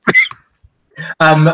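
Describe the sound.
A sharp cough bursts out as a speaker is asking a question, followed by a softer catch in the throat, then a pause before a voice picks up speaking.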